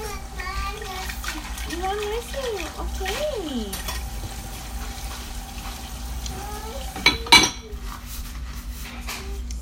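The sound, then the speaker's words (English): Dishes being washed under steady running water, with a sharp clatter of dishes and cutlery near the end. Faint voices murmur in the background. “And I'm grateful that I can ponder on these things when I'm doing dishes,”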